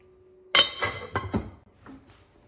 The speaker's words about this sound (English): Now toss to coat the chicken in the sauce, and we're going to put the lid on the pot. Turn the heat down to low and walk away and just let it simmer for about 10 minutes.